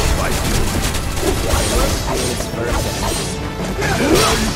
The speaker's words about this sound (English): An exterior window shatters, and a humanoid-like robot jumps through.